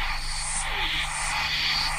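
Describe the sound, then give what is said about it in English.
A reversed track of filtered white noise with echo added washes along steadily for two seconds, a dense, airy hiss with a faint low hum beneath it and no voices. “One of those tracks is forward, so you get a sort of psss noise with a hiss on it, and the other one was reversed, so it went... But then we put echo on that... as well, so you didn't get any sort of hard drop-off ends.”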